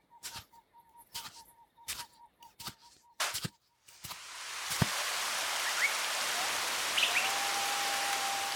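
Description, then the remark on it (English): A few sharp, irregular taps give way to the steady, hissing roar of a tall waterfall on an island splashing into a clear pool, loud and continuous, with faint bird chirps above the rush. “Wow, look at the waterfall. It's so tall, and the water is so clear.”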